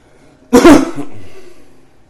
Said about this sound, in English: Oh, sorry, that cough probably just buried the needle.